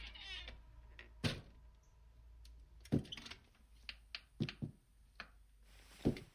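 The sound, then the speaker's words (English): A door creaks open with a squeaky hinge as a man comes in, followed by a series of sharp clunks and knocks spread over several seconds, like the latch and his footsteps. “I turned towards the door just as Mike Morsley came in”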